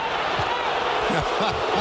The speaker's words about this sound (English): The crowd are booing. I don't know why.